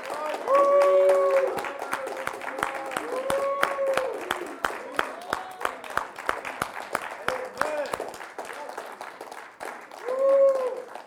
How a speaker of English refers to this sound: Now, while you're standing, do me a favor. I want you to take like maybe 15 seconds and give Jesus Christ the loudest praise with your voice and with your hand claps. Come on.